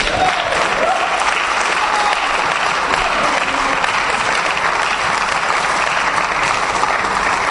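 A sustained round of applause for Martin Scott and the other preaching brothers, dense and steady clapping from many hands holding at a loud, even level for the whole stretch without a break.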